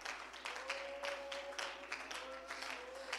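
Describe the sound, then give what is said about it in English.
A church audience claps hands to the Lord in a dense, steady patter of many overlapping claps, with a faint sustained tone humming underneath throughout. “Can we just clap our hands to the Lord one more time?”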